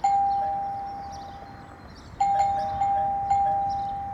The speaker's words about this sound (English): Hello? Anyone home? Oh, hey. Doorbell.